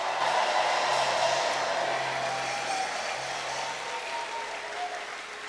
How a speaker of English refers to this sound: Clap your hands and celebrate the Lord.